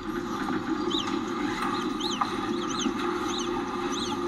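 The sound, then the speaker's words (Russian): Naked mole-rats chirping and squeaking: a rapid scatter of short, high, rising-and-falling peeps, several overlapping, over a constant low rumbling background. No voices. “Воробьева совершенно не хочет, чтобы голые землекопы чирикали, как воробьи”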